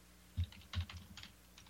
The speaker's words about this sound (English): Yeah, that was me typing. I'm just searching for more stuff.